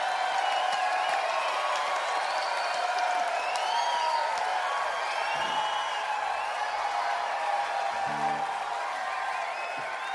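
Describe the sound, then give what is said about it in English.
A group of performers cheers and applauds the audience steadily for about ten seconds, a dense wash of clapping with scattered whoops and whistles, fairly loud, with no clear speech. “So we're going to cheer for you.”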